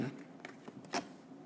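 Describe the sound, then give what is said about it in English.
A deck of angel cards, Mike Dooley's Notes from the Universe on Abundance deck, is shuffled before a card is picked: a few quick, soft papery riffles and flicks in a short burst, quiet, with no talking. “All right, let me shuffle the deck here.”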